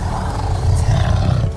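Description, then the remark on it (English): A tiger roars loudly, a deep, rumbling growl sustained for over a second with no voices over it. “Please don't fight the tiger.”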